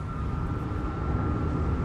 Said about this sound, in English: It's not the wind noise. It's the engine in Wheeler's car revved up to like 9,000 RPMs.